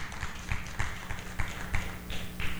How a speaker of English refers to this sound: Amen. You can clap. I'm not against clapping.